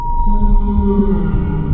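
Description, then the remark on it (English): A long, moaning whale call with layered tonal harmonics holds steady over a deep, rumbling low end, filling the whole stretch at a strong level with no voices. “At once, Gus is a whale stranded on a beach.”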